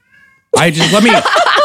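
After a brief faint tone, a pet cat named Gim Lee lets out loud meows, drawn-out and wavering, rising and falling in a quick run of several calls.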